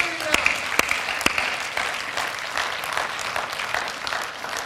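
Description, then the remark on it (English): A church audience claps their hands in a dense, steady burst of applause, with a few sharper individual claps standing out near the start, sustained at moderate loudness throughout. “Somebody clap their hands.”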